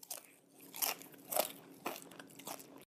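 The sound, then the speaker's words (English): Crunching of someone biting and chewing French-fried caterpillars, with about five sharp, crackly crunches at a steady chewing rhythm and no talking. “And if you don't want protein or chocolate, they have French-fried caterpillars, which offer a satisfying crunch.”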